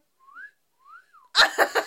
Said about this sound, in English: I can do that, but not very loud. So it's useless to film. So nobody can hear if you're whistling at them.